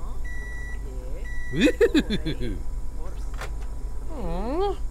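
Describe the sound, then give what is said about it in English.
Robotic electronic beeping: a couple of steady high tones, then a quick burst of chirpy warbling bleeps and a swooping, wobbling synthetic tone at the end, clear. “What do you beep if you have nothing to say?”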